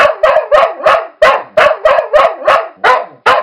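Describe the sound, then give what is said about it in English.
Many dogs in chain-link kennel runs bark frantically and nonstop, loud sharp barks overlapping in a rapid, chaotic, echoing chorus, set off as a quiet, well-trained test dog is walked in front of the runs and sits in the aisle. “And this unleash barking, jumping, doggish hell!”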